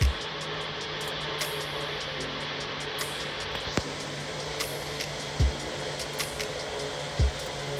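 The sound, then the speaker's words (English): A blender purees mango, plain yogurt, crushed cardamom seeds and water, running steadily throughout, a constant whirring roar with a low motor hum, broken by a few soft clunks and knocks as the mixture churns. No one speaks. “And just give this a blitz in the blender.”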